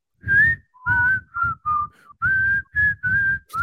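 Someone whistles a catchy pop melody up close, a run of about eight clear, sustained notes in a bouncy rhythm, with breathy low rumble under each note and no talking.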